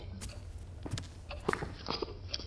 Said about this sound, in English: Thank you, young man. That's all? One little slurp?